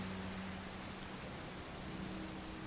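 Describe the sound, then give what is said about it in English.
Steady rain falls continuously, a dense, even hiss of drops with a faint low rumble of thunder beneath, no voices present. “You listen to the rain, you listen to the thunder.”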